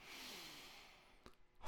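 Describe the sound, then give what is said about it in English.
A slow, airy deep breath is let out during a breathing exercise, gradually fading into near silence, followed by a faint click and the sudden start of another breathy sound. “continue our practice with our breathing, just like guitar practice.”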